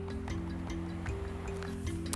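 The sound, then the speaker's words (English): River water laps and washes with soft, irregular splashes and clinks over a steady low droning hum, with no talking throughout. “It's basically when the river is like washing up like that, it's like calm because it calms me down.”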